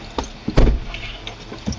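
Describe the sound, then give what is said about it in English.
Truck doors thunk shut in a short series of solid impacts, one heavier slam in the middle, as people climb into a truck in pouring rain, heard as a steady background hiss. “It's pouring rain when they all climb into Abe's truck the next day.”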